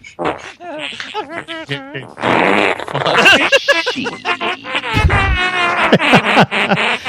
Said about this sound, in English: Oh, that was one, that's one fart noise? Oh, it's fart. It's the same. Do not press it again.